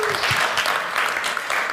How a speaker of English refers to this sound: He's got a great prophetic gift, and we really want to welcome him as he brings God's Word to us. Shall we bring him an applause?